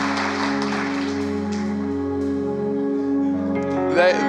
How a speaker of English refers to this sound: You're going to clap regardless of what I do, aren't you? Okay, I'll wait.